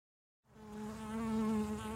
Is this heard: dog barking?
no